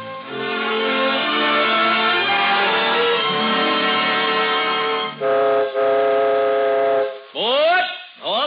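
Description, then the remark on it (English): A loud, sustained train whistle blows for several seconds over low rumbling, breaks briefly, then resumes before ending in sweeping, sliding wails as the train rolls along, on the Cavalcade of America's imaginary Christmas Eve train ride swooping all over the country. “So, this first peacetime Christmas Eve, the Cavalcade of America takes you on an imaginary train ride, swooping all over the country, seeking out the names of places which stand for home in such a special way tonight.”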